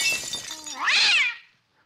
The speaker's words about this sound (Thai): ขออภัยครับโทษทีเมื่อกี้เด็กเสิร์ฟผมทำแก้วแตก ตอนนี้เช็ดได้เหรอ เช็ดเก็บเรียบร้อยแล้วอ่ะ